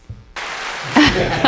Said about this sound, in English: We need louder applause for that.